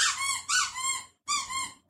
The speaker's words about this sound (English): I love that y'all have stuck with us, even though, like, we're not going to stop for our dog squeaking. No, that's not who we are. Look, Biscuit is a co-host of this podcast. He is featured on the artwork heavily. Yes. And he's going to chime in